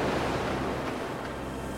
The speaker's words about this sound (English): As he laughs, the ocean just kind of rolls around him.